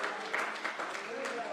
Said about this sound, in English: Come on, if you believe that, if you're happy about that, give the Lord a clap offering in this place.